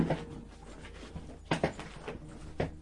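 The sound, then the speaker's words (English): A chair gives a series of short, sharp clicks at uneven intervals, quiet, with soft background hum between them and no one speaking. “Oh, the chair's now clicking.”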